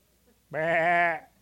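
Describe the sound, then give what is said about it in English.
A single wavering sheep-like bleat, about a second long, made by a person imitating a sheep; fairly loud, with quiet background sound before and after. “How good does your sheep sound?”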